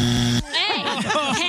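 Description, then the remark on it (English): A loud, flat electronic buzzer blares for a fraction of a second, signalling a first down at a football game, then cuts off as excited, overlapping voices and shouting take over. “He's got the buzzer. The buzzer means first Rude. Down.”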